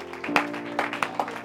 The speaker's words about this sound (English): Can you say amen? Can you say amen? Give a clap offering to the Lord if you would.